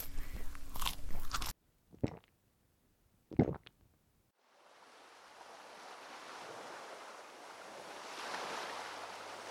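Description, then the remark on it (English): The Loch Ness Monster chewing: a dense, loud burst of gnashing, two sharp crunching bites, then a long rushing, gurgling wash like a huge gulp of water being swallowed. “Was the sound of the Loch Ness Monster chewing then swallowing the specter of Jeffrey Epstein.”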